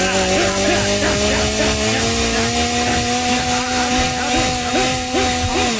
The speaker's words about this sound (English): Jimmy Jim said that we could take the chainsaw and destroy the studio with it when we move